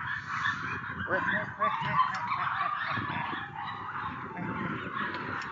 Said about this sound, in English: And there's some barking dogs.